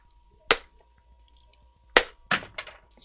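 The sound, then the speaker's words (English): Hammer blows smash a hard edible doll's head: one sharp crack, a pause, then three quicker cracking strikes with a brittle, breaking edge. No talking. “Okay, I'm going to keep smashing the skull.”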